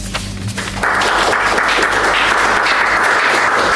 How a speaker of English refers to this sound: And another big applause for all of our readers today. You've all been fantastic.